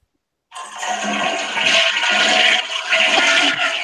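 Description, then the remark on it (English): A toilet flushes with a sudden loud rush of swirling water that starts abruptly and keeps roaring steadily for several seconds, with no talking over it. “Just got flushed.”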